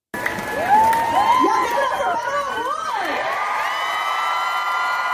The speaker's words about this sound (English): So this says the crowd goes wild as Beto takes the stage at the anti-NRA protests in Texas, in Houston, Texas.